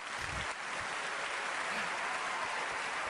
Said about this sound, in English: It felt like they were applauding me. It did. Man, that felt great.